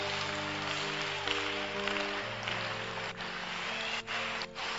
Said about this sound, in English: Father, those who are clapping, give them more money.